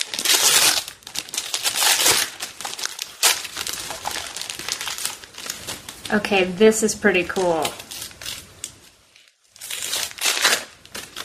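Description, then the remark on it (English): Crinkly packaging rustles and crackles as a package is unwrapped, in bursts of crumpling and tearing, with a person speaking briefly in the middle. “So I've got an interesting package here.”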